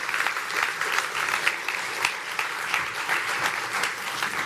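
An audience applauds steadily, a dense crackle of many hands clapping at once with no pauses, holding a fairly even, moderate loudness throughout.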